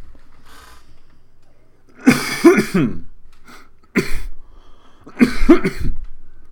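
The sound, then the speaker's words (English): Loud bursts of coughing and harsh throat clearing come in three clusters, each a rapid series of rough, explosive hacks separated by brief pauses, with no speech in between. “Sorry, we coughing.”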